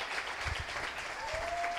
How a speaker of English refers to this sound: And your crew, if you're with Antioch Shoreline, just stand up. Give them a little clap.